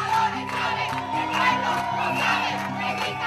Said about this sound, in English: Hundreds of students were out protesting down one of the biggest streets in Caracas, shouting, "Chavez is a dictator and the people know it."